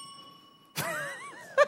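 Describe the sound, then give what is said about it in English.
A quiz answer bell rings with a steady, clear tone for most of a second, then breaks off as a voice cuts in with a quick burst of sound. “You're a little high on the bell.”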